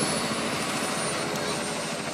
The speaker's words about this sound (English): And a rainbow helicopter pulls up.